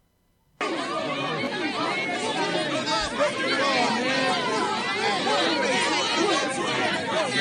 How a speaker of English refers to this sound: It's a big crowd of people. They're just belligerent with the police. Police are walking by, and the crowd of people are just... I mean, actually, a woman just shoved one of the cops.